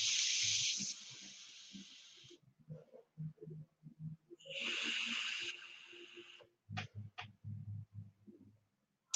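Two steady, breathy hisses of air drawn through vape atomizers, each lasting about two seconds, with low murmuring and soft thumps in the gaps between and after them. Two atomizers with the same, fully opened airflow are compared: one hisses more quietly, the other whistles a bit more.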